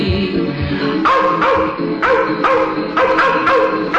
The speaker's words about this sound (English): And they're snarling, yapping, yelping's like a dream. The wild dogs of Kentucky.